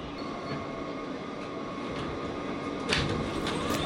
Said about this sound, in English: This is a Queensbound F local train. The next stop is 4750th Street, Rockefeller Center. Stand clear of the closing doors, please.